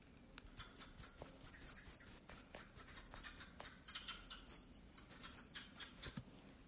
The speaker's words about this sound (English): They have vocalizations three times higher than humans. And their heart rate is twice as fast. So I'm going to show you a clip. You're going to listen to a clip of the golden lion tamarin monkey call. All right, here we go.